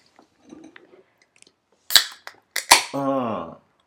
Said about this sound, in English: So like I said, Temescal, let's crack some of these beers.